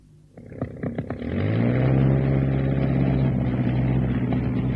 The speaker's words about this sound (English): I can fly a plane. What plane? This one, the Sopwith. It's good enough to get me to the coast.